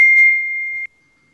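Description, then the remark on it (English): A single steady electronic beep at one high pitch, holding clear and fairly loud for under a second before cutting off abruptly, with no voices. “You just beeped yourself.”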